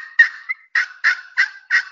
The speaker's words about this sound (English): Okay, so like your normal yelp sequence is going to, you know, a couple of clucks, you know, a couple of clucks.